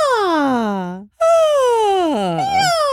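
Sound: voice imitating a siren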